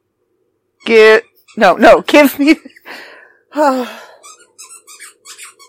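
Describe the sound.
A squeaky toy squeals loudly and repeatedly as a dog named Odie chews on it, with a string of quicker, fainter squeaks near the end while a person speaks briefly in between.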